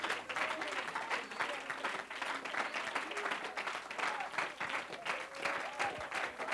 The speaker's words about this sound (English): And would you clap your hands unto the Lord one more time?